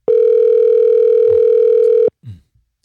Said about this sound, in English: All right, we got a ringtone here.